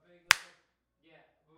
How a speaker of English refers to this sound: Clap kind of in front of the mic and the things like.